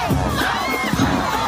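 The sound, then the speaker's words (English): A loud crowd roars and cheers continuously at Piper High School's homecoming football game in Sunrise, Florida, with many overlapping shouting voices forming a dense, steady wall of excited noise throughout. “And the crowd went absolutely wild.”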